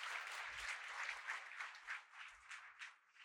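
Sustained applause from a crowd, many hands clapping densely and steadily for a few seconds, filling the space at a moderate, even level before tapering slightly toward the end; a hand clap given to the Lord.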